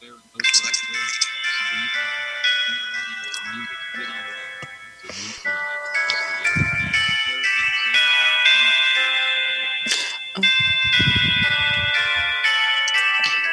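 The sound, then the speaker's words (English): A Whittington clock chime melody plays from an iPhone: a steady sequence of ringing, bell-like tones that overlap and sustain, with a few brief low thumps and murmurs underneath. “And it plays the whole thing, as you can tell, so you can hear what it sounds like at the top of the hour.”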